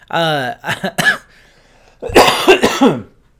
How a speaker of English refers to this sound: Like I said, this cough is still here and it's going to be here for a while.